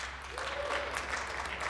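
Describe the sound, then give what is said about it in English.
A live show audience claps in a round of applause for listeners who started listening back in 2005, a dense, steady patter of many hands at an even level throughout, with no voices standing out. “Round of applause. Go ahead and clap.”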